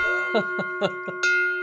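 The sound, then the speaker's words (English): A large bell is rung to celebrate a business reaching its goal of 500 maintenance accounts. It gives a bright, sustained metallic tone, struck about five times in a quick, uneven rhythm, each strike adding a short clang over the lingering hum. “I brought the big ass bell to the interview today.”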